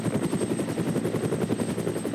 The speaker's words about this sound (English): The helicopter showed up.